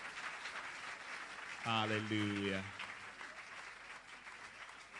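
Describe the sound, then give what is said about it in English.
Steady audience applause at a Lighthouse Chapel International shepherd's camp, welcoming the first-time attendees, fills the whole clip as a dense, even patter of clapping, while a man's voice briefly calls out over it in a long, drawn-out word. “And you, the old timers, can you put your hands together and welcome the new timers?”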